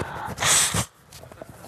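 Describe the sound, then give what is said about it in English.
Someone blows their nose into a handkerchief: one loud, rough burst of air lasting about half a second, followed by faint sniffly breaths and soft rustling, with no talking. “You might want to turn this down while I have a little blow.”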